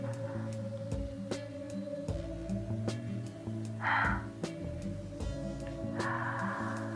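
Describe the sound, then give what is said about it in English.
Heavy breathing, with a couple of breathy exhales rising over a steady low hum and scattered faint clicks; no one speaks. “I wonder what the heavy breathing is.”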